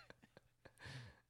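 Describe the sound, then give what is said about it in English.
Snow geese honking: a quick series of short, clipped calls, then a louder, drawn-out honk from a flock, with no talking. “Snow geese.”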